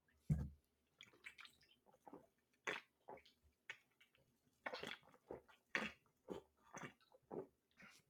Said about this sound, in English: Sounds like you're slurping on the cock.